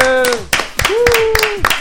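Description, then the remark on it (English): Scattered, sharp handclaps of applause mixed with a voice whooping in long sliding tones, all lasting under two seconds at fairly loud volume. “Such a big crowd today.”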